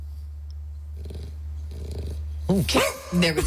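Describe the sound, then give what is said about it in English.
A dog gives a short woof on request near the end, mixed in with someone speaking, after a few seconds of quiet hum and faint shuffling. “Can you show them how to bark like a normal dog? Can you woof?”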